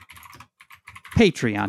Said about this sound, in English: I'm stalling while Maureen is typing. I'm typing a message to my doctor.